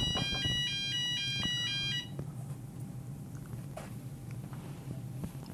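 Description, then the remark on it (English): A fire alarm, not set off by a real fire, blares in rapid, high-pitched electronic pulses for about two seconds, then cuts off, leaving a low background rumble and faint noises with no one speaking. “It's not a real fire alarm.”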